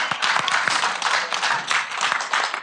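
An audience applauds the wise men of a nativity scene with steady, dense clapping that holds an even loudness for a few seconds, the many overlapping claps blending into a bright, continuous patter with no voices over it.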